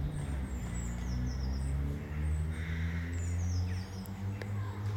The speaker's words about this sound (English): So take those sweet reverberations into your heart. And just let them fill you with gratitude for the blessing that birds are.